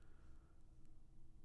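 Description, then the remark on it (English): A few faint, sharp computer mouse clicks spaced irregularly over a quiet background hum, with a small cluster of quick clicks near the end, as someone clicks back and forth on a computer. “Sorry, I'm clicking back and forth here.”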